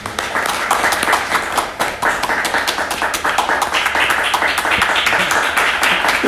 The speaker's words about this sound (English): Wow. That's the extra clap.